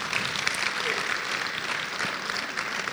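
An audience claps for Jesus together in a dense, continuous patter of many hands, holding a steady, fairly loud level for about three seconds with no voices rising above it.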